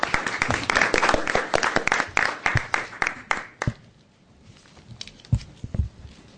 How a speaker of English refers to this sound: So what we'll do now is transition the dais with a round of applause to our panel. And again, thank you all for participating.